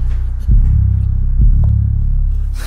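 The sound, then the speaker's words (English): A deep, booming bass beat from a hip-hop song, with heavy low thumps landing about a second apart over a loud, sustained low rumble. No voices are heard. “No, this beat, no. This bass is deep as hell.”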